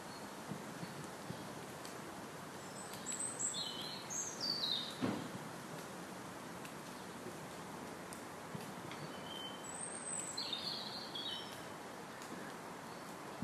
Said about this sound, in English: I feel like there's a frog in the tree. Ha! That sounds a bit weird. Sounds like there's a frog up there.